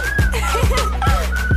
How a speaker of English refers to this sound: Just whistle while you twerk.